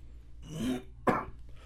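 A person coughs twice up close, a rough throaty hack followed by a sharper, louder cough, with no talking.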